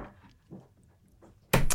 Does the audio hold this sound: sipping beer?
no